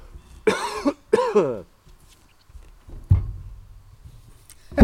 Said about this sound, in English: Wanted to check when I had to edit out that cough.